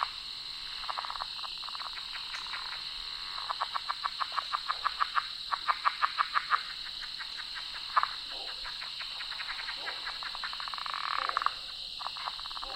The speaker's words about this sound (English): When the leopard frogs quit calling, I'm going to try to get closer to those croaks.